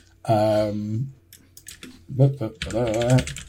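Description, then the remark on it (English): Quick clicks of typing on a computer keyboard, a short burst of keystrokes between stretches of a voice vocalizing over it, as someone types to double-check something. “You're going to hear me typing because I'm just going to double check.”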